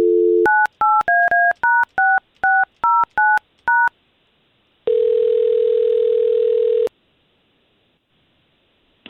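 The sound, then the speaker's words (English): A brief dial tone gives way to a quick, evenly paced run of about eleven touch-tone keypad beeps as a man's phone number is dialed, then a pause and one long ringing tone. Clear, with no voices. “We're going to try to get him on the line and see if we can't find out what's going on with him, okay?”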